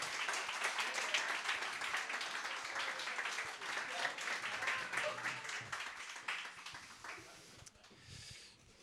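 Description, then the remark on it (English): A crowd applauds steadily for Father Martin McGill as he is invited up on the stage, a dense crackle of many hands clapping at an even level for about eight seconds before it thins and fades out. “So let's give a round of applause to Father Martin McGill.”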